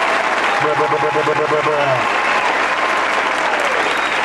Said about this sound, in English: Fucking round of applause, bro.